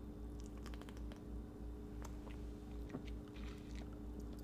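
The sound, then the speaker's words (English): Quiet wet mouth sounds of someone sipping a fizzy Blood Raz zero-sugar energy drink: a few soft slurps and small liquid clicks over a steady low hum, with no talking. “Like, all energy drinks have the same thing when you take that first sip, and it's like, oh, you know what I'm saying?”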